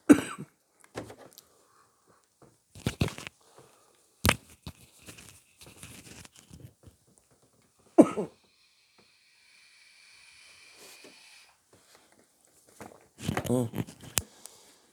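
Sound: coughing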